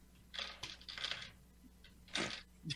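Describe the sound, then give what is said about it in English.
Dice rattle and clatter inside a giant bag in two bursts of shaking, a longer jostling run followed by a shorter shake, moderately quiet with no talking. “playing with this giant bag of dice.”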